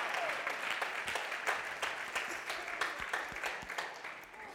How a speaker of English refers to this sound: Again, everybody, y'all give our outreach pastor a round of applause, you know.